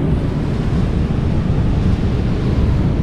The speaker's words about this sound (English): Beautiful ocean, beautiful weather. That's real, right?